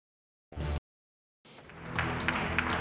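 A crowd at a stock exchange opening breaks into applause after a short burst of sound and a brief pause, the clapping building into a dense, steady roar that continues to the end.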